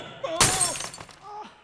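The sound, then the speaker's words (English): A sudden loud crystalline shatter as a big basketball diamond breaks into thousands of pieces, followed by a brief scatter of tinkling fragments and some faint tonal squeals fading away. “Our big basketball diamond shattered into thousands of pieces by the hardest substance known to man.”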